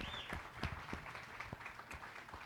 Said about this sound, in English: Give our band a big round of applause.